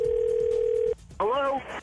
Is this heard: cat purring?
no